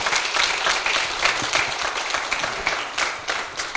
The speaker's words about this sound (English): Yeah, we can clap and applaud.